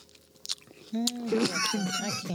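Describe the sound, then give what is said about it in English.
Wet crunching as someone bites and chews watermelon for breakfast, a few short crisp bursts, then a voice making sounds over the continued chewing. “I'm eating watermelon for breakfast. Listen.”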